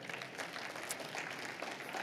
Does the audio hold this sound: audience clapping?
yes